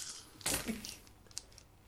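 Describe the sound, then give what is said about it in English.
Dice rattle briefly and clatter onto a hard table, a sharp burst followed by a few smaller clicks as they settle, fairly quiet against soft background noise; 2d8 (two eight-sided dice) rolled for a hit in a tabletop game. “So roll hit, a hit. 2d8 twice.”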